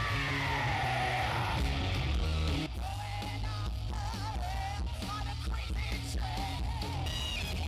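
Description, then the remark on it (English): A crowd at a tribute night for a singer screams and cheers loudly without letup, a dense roar with individual yells and whoops rising and falling above it for several seconds, dipping slightly partway through. “Scream for …!”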